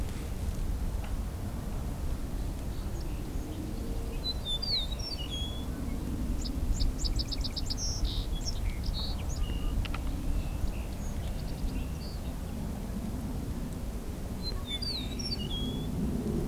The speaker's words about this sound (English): And a song sparrow here too.